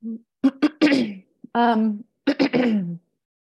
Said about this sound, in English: Sorry, I'm coughing from a cold.